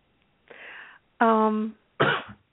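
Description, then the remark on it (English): A single sneeze: a breathy intake, a loud voiced 'ah' with clear pitch, then a sharp noisy burst to finish. It stands alone with no talking around it. “Today, cool. Bless you.”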